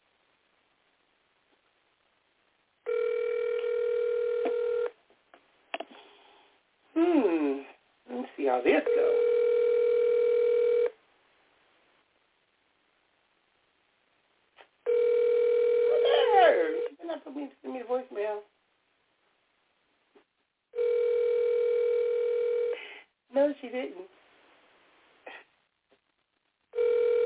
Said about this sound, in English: And I hope she answers the phone.